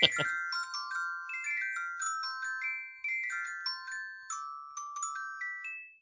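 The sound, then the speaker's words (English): A bright, synthesized phone ringtone, Dave Bautista's ringtone put on a phone, plays a cheerful melody of quick chiming notes in repeating phrases, steady for about six seconds after a brief thump at the start. “Little known fact that that's actually Dave Bautista's ringtone that I put on my phone.”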